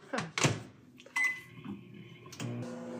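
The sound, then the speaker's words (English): A couple of sharp clicks and knocks, then a short electronic beep as a microwave starts up to melt 1.5 sticks of butter in a large bowl and settles into a low, steady mechanical hum, with no talking. “Actually, I'm going to melt it. Not so it's boiling, but in the microwave.”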